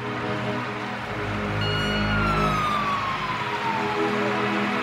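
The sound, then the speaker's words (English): A fire truck siren wails over a heavy rumble of traffic and engine noise as fire trucks come out of a fire station, its pitch sliding downward as the truck passes by, with no voices. “As I went by the fire station, fire trucks are coming out.”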